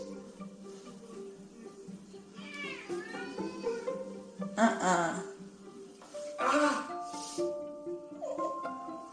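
A domestic cat meows a few times, drawn-out rising and falling cries at moderate loudness, with other tonal sounds and background noise continuing around them.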